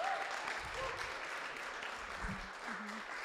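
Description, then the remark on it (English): An audience applauds, a dense, steady wash of many hands clapping that holds at an even level for about three seconds, with a few murmured voices mixed underneath, giving a group of people a round of applause to thank them. “Well, hey, give these guys a round of applause.”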